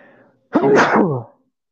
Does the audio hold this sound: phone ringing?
no